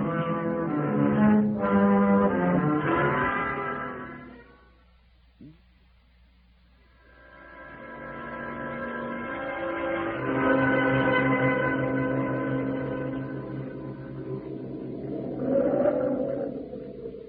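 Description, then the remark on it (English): Howling wind from the east as a storm comes up, moaning in long, tonal waves, loud at first, dropping to a lull for a couple of seconds, then swelling back up and gusting strongly again. “There's a storm coming up. That wind's from the east.”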